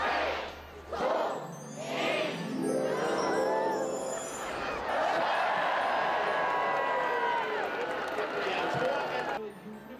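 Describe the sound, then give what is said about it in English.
A large crowd chants a countdown to the Christmas tree lights switching on, in rhythmic shouted bursts, then erupts into loud, sustained cheering and excited voices that carry on dense until the end. “Crowds gathered, counting down to the Christmas tree lights switching on.”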